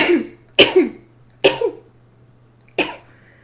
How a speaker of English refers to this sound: So, sorry, I'm going to sneeze. I don't want to sneeze.